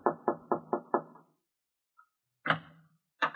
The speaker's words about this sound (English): Your throat feels a little tight as you go upstairs and knock on the door.